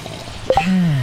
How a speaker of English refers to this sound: Can we take a sip of coffee together absolutely. Real quick? This is.